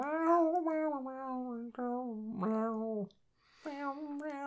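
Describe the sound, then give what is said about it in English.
A person sings in drawn-out, wavering, nasal tones like a yowling cat, fairly loud, with short breaks between the wailing phrases and a brief pause before the last one. “You sound like a cat singing on a fence.”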